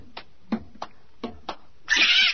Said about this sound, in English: It's a cat! A cat! Get away! Get away! Stop kicking my cat!